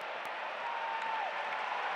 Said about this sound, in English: Come on! That's got the crowd excited.